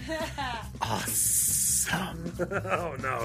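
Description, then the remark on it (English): A person lets out a sharp, steady hiss like a snake, lasting under a second, with voices talking just before and after. “Oh no, the snake's back.”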